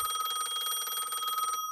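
A telephone rings with a rapid, high-pitched bell trill, one continuous burst lasting about a second and a half before cutting off abruptly. No voices are heard.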